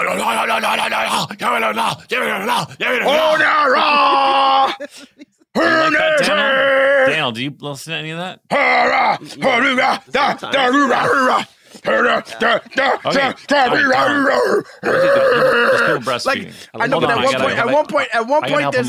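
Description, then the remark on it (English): A voice imitates metal-style pig squeal vocals: loud, strained, guttural bursts with wavering, sliding pitch, repeated in choppy stretches with short gaps, alongside a brief spoken question. “Yeah, get a good pig squeal going.”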